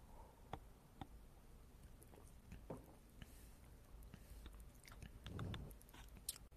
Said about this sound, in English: Another sip of coconut water.